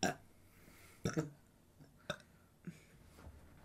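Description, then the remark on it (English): A small, weak burp among a few short, quiet throaty bursts spaced about a second apart, with no talking. “That was bad. I wanted it to be bigger.”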